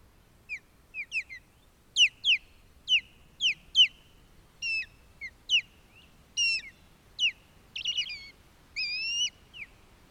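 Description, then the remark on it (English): An osprey gives a series of sharp, high whistled chirps, repeated in quick irregular bursts over several seconds, clear against a quiet background with no voices. “It's an osprey.”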